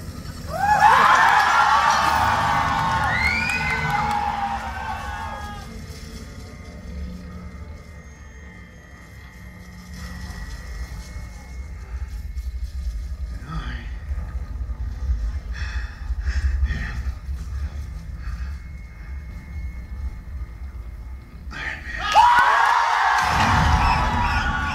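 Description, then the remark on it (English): A movie theater audience erupts in wild cheering, screams and whoops at the "I am Iron Man" scene, loud and dense, fading into a low rumbling murmur before another loud burst of cheering breaks out at the end. “And the crowd, the audience, went wild. Just look at some of these reactions.”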